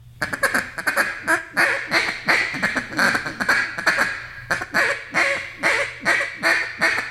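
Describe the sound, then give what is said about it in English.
A duck call blown in quick, choppy bursts at ducks lining up to land: rapid hiccuping clucks and short rolling feed-call chatter with bottle single feeds, loud, repeating steadily with brief gaps and no talking. “As soon as they fixing to make that turn and they get lined up with the hole, I'll start hiccuping at them and maybe throw a couple feed calls in, just you know, some bottle single feeds.”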